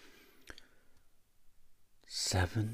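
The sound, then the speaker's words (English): A sharp click, then a fainter tap, as a twenty-sided die lands and tumbles on a hard surface, followed by a louder clattering burst at the end. “I was going to roll this 20-sided dice off Jocelyn and see what number I got”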